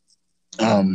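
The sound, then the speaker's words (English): A single muffled cough bursts out after a moment of silence, the speaker trying to muffle the microphone, a dull, throaty rasp that lingers with a voiced, groaning tail. “I just coughed again, but I tried to muffle the mic.”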